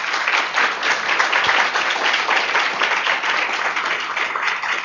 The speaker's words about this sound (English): So with that said, let's jump right in and give these ladies a wonderful round of applause.